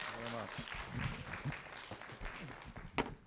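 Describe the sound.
An audience breaks into steady applause, a dense patter of many hands clapping for a few seconds while voices murmur and call out underneath.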